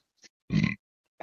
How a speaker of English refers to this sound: I apologize for that. I had to burp.